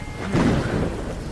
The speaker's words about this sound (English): With all this lightning, perhaps a tree is not the safest of places.